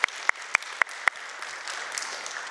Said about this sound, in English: Yeah, we can clap that up.